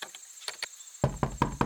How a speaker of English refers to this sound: A knocking on the door interrupted Aspen's dinner preparation. He wasn't expecting anyone. Who could this be? So far out in the woods, so late at night.